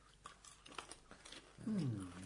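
Crunchy munching of popcorn, a quick run of irregular bites and chews, followed near the end by a voice starting to talk over it.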